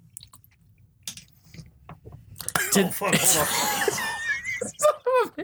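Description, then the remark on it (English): Wet sputtering and choking coughs from someone who choked on water they were drinking, trailing into breathy, wheezy gasps and stifled laughter. “I had water, then I started choking.”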